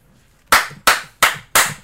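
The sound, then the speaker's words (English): Four sharp hand claps in a steady, evenly spaced rhythm, given as a rating, loud, each with a crisp attack and a quick decay, with no voices. “Let's go ahead and give our snaps and claps and all whatever we give them.”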